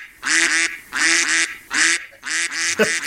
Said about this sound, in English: I can't stop the ducks.